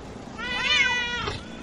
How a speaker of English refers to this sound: Because I have all these cats in here because I'm trying to breed them all, but they're making a mess because I forgot the litter box.